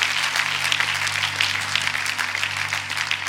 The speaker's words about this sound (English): Come on, one more clap offering, then take your seat.